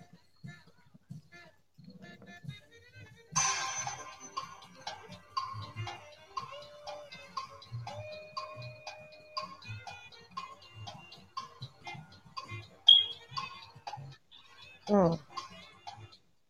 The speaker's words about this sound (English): And I got to put a timer on this one for y'all. 30 seconds, okay?